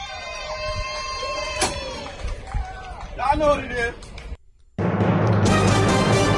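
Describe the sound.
A small group of people whooping and cheering, with rising shouts and scattered voices, then a brief pause before a steady, loud wash of crowd noise.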